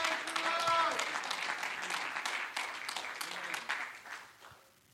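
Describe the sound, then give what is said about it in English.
An audience claps hands unto the Lord in a dense wash of applause that starts loud and gradually fades out over several seconds, with a few voices calling out briefly at the start. “Come on, would you clap your hands unto the Lord right now?”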